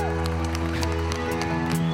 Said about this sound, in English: Now give him a hand clap of praise.